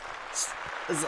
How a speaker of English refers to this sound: Hold on, how long is this applause? There we go.